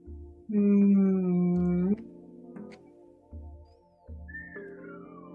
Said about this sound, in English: What does a no look like? Because a yes is a whistle.